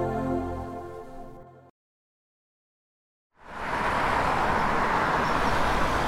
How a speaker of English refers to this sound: The local bus screeched to a halt, and we pressed in as best we could.